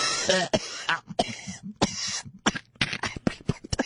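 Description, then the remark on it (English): A fit of harsh coughing: several rough bursts in quick, uneven succession, with some throat clearing between them and no one talking. “She could diagnose your cough.”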